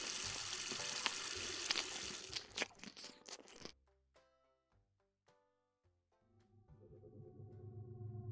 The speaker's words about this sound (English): I reached over, plugged the sink, turned on the tap.